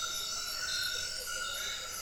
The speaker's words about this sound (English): Once again, we are taken by the mysterious sounds of the frogs and insects, and those odd mumbling frogs are calling from the surrounding shrubs, giving this exquisite soundscape a strange, otherworldly flavor.